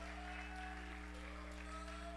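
An audience claps together in a dense, continuous patter that stays fairly even throughout, fairly quiet overall, with a steady low droning hum running underneath.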